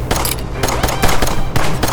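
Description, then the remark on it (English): Rapid bursts of blaster gunfire crackle in a dense, rattling stream, sharp zaps repeating several times a second at a steady loud level with no voices. “stop shooting and get in here.”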